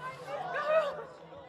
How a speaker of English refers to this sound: Then suddenly, in this crowd, a family I know from Syria.